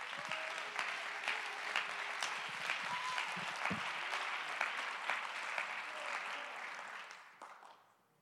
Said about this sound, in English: Come on, let's clap our hands to give God praise right now.